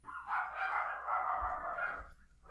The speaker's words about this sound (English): A pack of roving dogs come to kill us all.